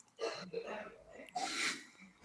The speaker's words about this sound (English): Is somebody dying in your house? No, hopefully not. It's just that sounded like the COVID cough, man.